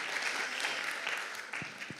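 Steady applause from a crowd, a dense continuous patter of many hands clapping at an even level, with a few sharper individual claps near the end.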